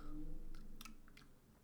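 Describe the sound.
A voice imitates ASMR chewing of a taco, with a few wet, smacking mouth clicks and crunchy bursts, spaced irregularly, quiet and intimate, with no talking.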